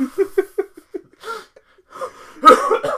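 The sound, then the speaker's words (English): A short run of breathy, rhythmic huffs gives way to rough, noisy coughs, the loudest burst coming near the end and trailing into hoarse, wheezy sounds. “That's me coughing.”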